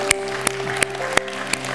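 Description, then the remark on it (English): A church audience claps for Jesus in unison, five sharp, evenly spaced hand claps in a steady beat over a soft, sustained musical tone. “Give a hand clap for Jesus.”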